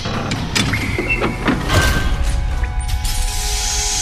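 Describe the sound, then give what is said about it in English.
A giant heavy metal panel slides and slams shut over a building's exit with loud clanks and grinding, rattling mechanical noise, leaving a sustained metallic hum ringing afterward. “Suddenly, a giant metal panel slams shut over the building's exit.”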